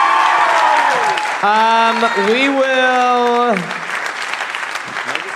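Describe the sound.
Steady, dense applause from an audience at a comedy show in Adelaide fills the whole clip, loud and continuous, while a man's voice speaks over it partway through before the clapping carries on slightly softer.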